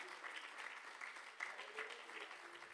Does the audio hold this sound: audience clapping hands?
yes